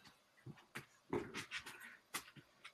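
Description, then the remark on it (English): Dogs whimper and pant quietly, a string of short breathy huffs and a brief whiny cry, with no one talking. “She's fighting with the dogs.”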